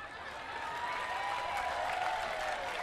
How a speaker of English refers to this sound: Yeah, you're clapping.